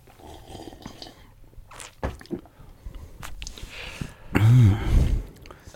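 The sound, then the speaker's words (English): Wet mouth noises and a few small clicks, then a louder slurping sip near the end as someone draws in a juicy drink, with a brief breathy follow-through. “Sounded more like a sip to me.”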